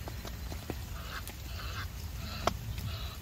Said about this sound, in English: Geese, Egyptian geese, I think they were.